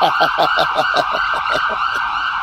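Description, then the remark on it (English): An emergency vehicle siren wails in a fast, warbling yelp, pulsing rapidly and steadily at loud volume, with no voices over it. “Like, turn on the fucking sirens, man.”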